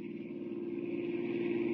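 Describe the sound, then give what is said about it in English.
A small car engine drones steadily at speed as the car races toward an airport, a continuous hum with a gritty buzzing edge and no voices, holding an even pitch throughout. “As our story continues today, we find them in a small car, racing toward a distant airport, hoping against hope to get there in time.”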